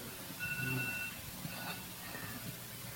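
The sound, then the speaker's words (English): A faint electronic alarm sounds briefly, a steady high beeping tone lasting under a second over a low background hum, then fades into quiet. “That alarm went off at the right time.”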